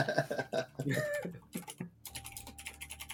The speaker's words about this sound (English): I'm going to subtly type with my... Clicky-clacky, typey-typey. This typing brought to you by our sponsor today, Nobody.